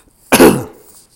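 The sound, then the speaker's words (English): A single short, harsh cough with a throaty, clearing quality, fairly loud, bursting suddenly and trailing off quickly into quiet, made deliberately by a person demonstrating their cough, which sounds like clearing the throat. “I'll demonstrate the cough so that way you can judge for yourself whether this sounds like a COVID cough.”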